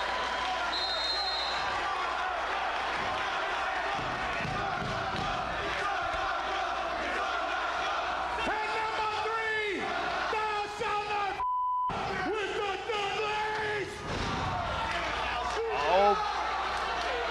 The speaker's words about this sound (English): Though, on each of those you would have just heard, that's the sound of a chair smashing against Tanaka's head and him giving the look